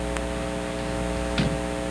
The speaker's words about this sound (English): Yeah, and I don't have a hum. Yeah, well, if I plug it in. Oh.